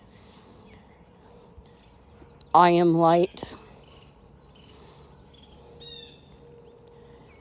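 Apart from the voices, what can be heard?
birds chirping outdoors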